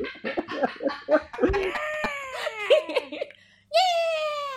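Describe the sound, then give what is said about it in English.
A voice tries to imitate a pig, letting out choppy bursts, then a long warbling, rising squeal. After a brief pause, another high, strained squeal follows, loud. “That's not what pigs make. I'm sorry.”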